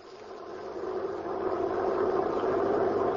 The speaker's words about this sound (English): The prison truck was driving along the road.